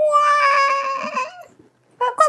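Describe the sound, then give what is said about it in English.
A voice imitates a long, wavering wail that holds steady for over a second, then trails off; after a brief silence comes a short, higher-pitched burst of the same crying tone. “Are you literally... making that wailing noise and then the car.”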